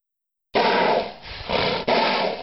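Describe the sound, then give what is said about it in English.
A horse snorts in a loud, rough burst of breathy air that pulses roughly three times without a pause, with a low rumbling undertone and no voices. “but they can snort when they're posturing, not happy, fighting, but play fighting, they'll do this.”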